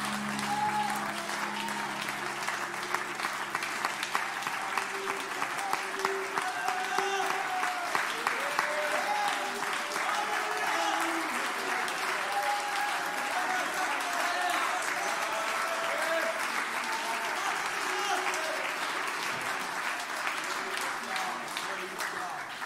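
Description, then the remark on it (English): A large crowd at a worship service claps steadily and loudly in praise of the Lord for over twenty seconds, a dense continuous wash of hand claps with voices cheering and calling out underneath. “Give the Lord a great hand clap of praise and lift your voice with that hand clap.”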